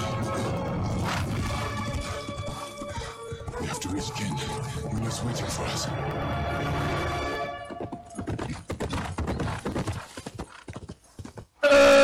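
Horse hooves clip-clop in a steady rhythm through a busy video game soundscape, with layered music and effects, the hoofbeats turning sharper and more distinct near the end before an abrupt tone.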